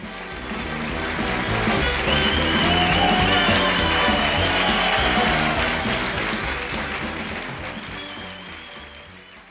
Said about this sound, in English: Here's the stereo, which feels more natural, like a fade to applause, and then again in mono, where everything fades.